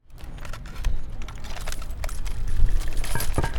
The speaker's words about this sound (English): The sound of wheels rattling across the bricks of UNC's sidewalks has become much more common in recent years. To pedestrians, it's a signal to step out of the way, as it means an electric scooter is likely inbound.